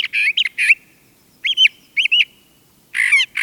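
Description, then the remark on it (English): A brown thrasher sings in short, varied bursts of bright, slurred and buzzy phrases, mixing songs learned from other birds, several repeated in pairs, separated by brief pauses against a quiet background. “Brown thrashers also learn songs from nearby birds and add them to their repertoire.”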